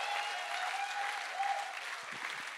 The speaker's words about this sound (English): Come on, if you believe that, how about giving God a big clap of praise?